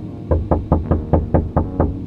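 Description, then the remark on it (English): Eight quick, evenly spaced knocks on a front door, loud, in a steady insistent rhythm with no voices, over a low background hum. “The door came alive under his hand.”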